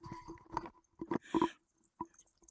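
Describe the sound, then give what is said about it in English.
A cat named Debbie chews and crunches her food in quick, irregular bursts of wet clicking and munching, fairly loud, with brief pauses between mouthfuls and no talking. “She's eating. Do you hear it? Oh, there it goes. We've got some choice eating audio going on.”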